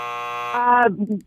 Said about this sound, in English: Oh, after the buzzer. After the buzzer.